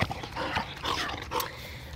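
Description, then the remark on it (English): A dog growls and whimpers, a steady rough rumble broken by a couple of short, high whines, with no one talking. “We decided to get some dogs when we moved to Hopeton Street, just down here.”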